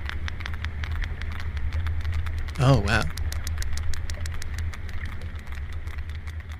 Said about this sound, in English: so you can play some of these clicking sounds of sperm whales, which is, it kind of sounds a little bit like underwater popcorn to me, but.